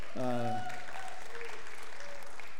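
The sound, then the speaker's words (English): A church audience claps steadily for a couple of seconds for the pastor's wife of 25 years, a dense wash of overlapping hand claps, with a short voiced whoop at the start that quickly fades under the clapping. “And more importantly, a round of applause for my wife that I've also been married to for 25 years.”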